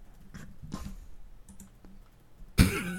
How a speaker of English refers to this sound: I'm typing it in right now.